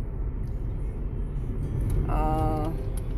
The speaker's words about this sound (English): Well, I probably have a lot to say, but I'm driving and it's crazy right now, traffic-wise.